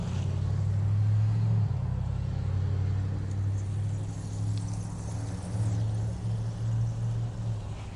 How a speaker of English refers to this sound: Lots of traffic here.